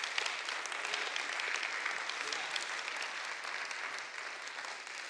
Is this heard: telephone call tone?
no